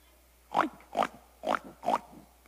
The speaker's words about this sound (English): I'm sorry, dear. I only have my oink. No purr.